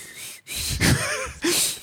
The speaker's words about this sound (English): Can you whistle? Yeah. Are you good at whistling? I can do the inhale whistle also.